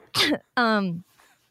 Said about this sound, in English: Jesus. Just coughed in my face.